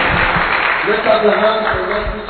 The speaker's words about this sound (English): Oh, keep clapping, keep clapping, and give the Lord a shout. Hallelujah. Amen. Hallelujah. Amen. Hallelujah. Amen. Why don't you clap your hands for the Lord?